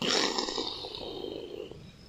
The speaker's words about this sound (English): Initiate main engine burn. The rocket powers to life as the Castronauts begin to head for their second part of the journey.